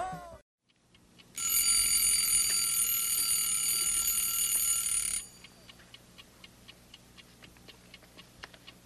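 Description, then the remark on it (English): A loud, shrill alarm clock bell rings for about four seconds, signalling time to get up, then cuts off abruptly, leaving a steady clock ticking. “The alarm just went off, Bert.”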